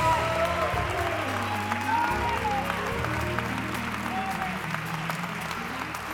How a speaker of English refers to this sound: Come on, can you give the Lord a hand of praise?